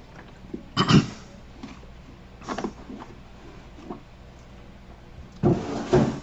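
A man clears his throat a few times: a short rasp near the start, another a couple of seconds later, then a longer, rougher clearing at the end, with quiet between.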